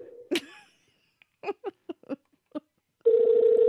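A phone's dial tone cuts off with a sharp click, then a quick, uneven run of about seven key-press beeps as someone calls a person back, followed by a steady, loud ringback tone starting up. No one speaks.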